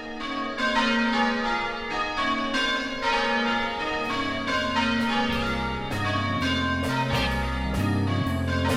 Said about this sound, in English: Now I hear the bells calling me to church.